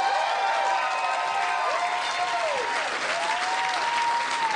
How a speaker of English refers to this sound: A big round of applause for Lacey for making this all happen.